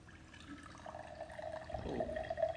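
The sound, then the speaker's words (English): Liquid is poured steadily into a glass in front of people, a continuous splashing with a resonant tone that grows fuller and louder as the glass fills, with no talking. “What I want you to do is I want you to pour it in this glass in front of everyone.”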